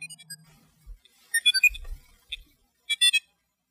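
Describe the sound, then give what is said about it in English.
A Star Wars R2-D2 mouse droid toy, its batteries running low, chirps out bursts of high, warbling electronic beeps in three short clusters, with soft low thuds mixed in and no talking. “The batteries are starting to go on it, I think. This little R2-D2 mouse.”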